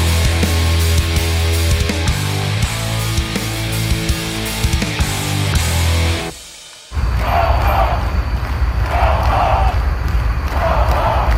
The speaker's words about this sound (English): That is a crowd of counter-protesters chanting "Go Home" on Saturday to the group that's been outside the legislative building for well over a week now.